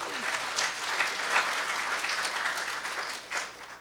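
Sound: audience applause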